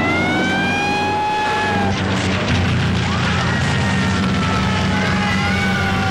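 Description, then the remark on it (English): Emergency sirens wail in rising and falling sweeps over a heavy, loud engine rumble as a fire engine drives right behind a rescue truck. “He's right on the tail of that rescue truck.”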